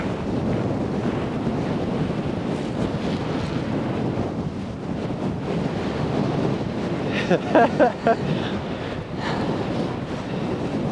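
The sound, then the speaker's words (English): Steady, blustery wind buffets the microphone outdoors by a river during a walk, a continuous low rumble with rushing hiss, broken by a few brief knocking bursts near the end. No one speaks. “We'll see how good of an idea it was to go for a walk at the river.”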